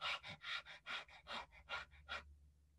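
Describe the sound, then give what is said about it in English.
A person imitates a small, tired dog's quick, breathy panting as a voice exercise: about eight rapid, even huffs in a steady rhythm, fairly loud, then stopping abruptly, with no speech. “You can also think of like a really small dog that's really tired.”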